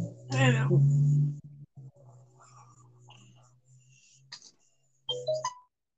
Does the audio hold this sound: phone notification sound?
yes